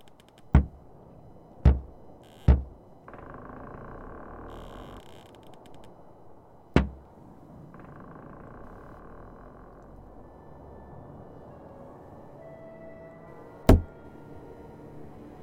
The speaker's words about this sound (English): Will you just stop the pounding of that cabin door? A woman turned about, then leaned down as she stuffed a rock near the bottom to wedge the door shut against the blizzard outside.